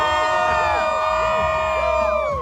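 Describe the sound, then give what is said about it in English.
A crowd of Chiefs football fans in Chiefs Kingdom roars for a couple of seconds, a loud sustained wall of shouting voices with rising and falling whoops and yells layered over one another. “Here in Chiefs Kingdom, let me get a little Chiefs Kingdom roar here.”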